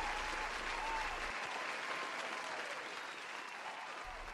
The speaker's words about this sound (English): So round of applause for ….